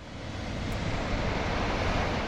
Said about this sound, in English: Water pours out of the Baells Dam north of Barcelona into the Llobregat River.